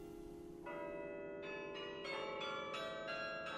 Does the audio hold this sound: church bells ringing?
yes